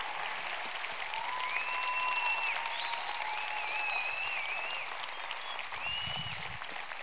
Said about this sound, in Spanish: Creo que nuestro elenco de hoy merece un fuerte aplauso por el gran trabajo que hicieron.